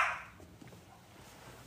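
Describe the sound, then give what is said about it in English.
A single short dog bark at the very start, fairly faint, followed by quiet background noise with no talking. “Yeah, you can hear him.”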